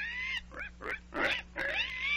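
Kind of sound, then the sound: animal, pig grunting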